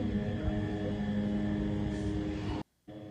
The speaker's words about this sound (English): Okay, I don't know what the point of that clip was. I thought that was going to like show Israel doing something awful. It's just literally a drone.